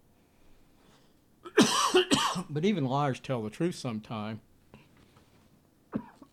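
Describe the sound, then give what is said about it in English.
Two harsh coughs burst out back to back, followed by someone speaking a short sentence, then a brief catch of breath or throat sound near the end. “Coughing now. Coughing already started.”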